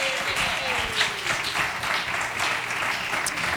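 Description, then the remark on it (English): Steady, dense applause from an audience, many hands clapping continuously without pause, a round of applause for the winners. “Round of applause for our winners.”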